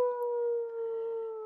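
A dog on a front porch howls in pain in one long, steady, mournful note that sags slightly in pitch, loud, with no other sounds around it.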